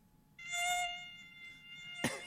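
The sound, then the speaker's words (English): A mosquito's thin, high-pitched whine hovers indoors for about two seconds, steady with slight wavering, amid otherwise quiet, ending with a brief soft thump. “Damn, pesky mosquitoes. It's a mosquito.”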